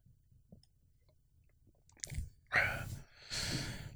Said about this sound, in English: Take a sip here.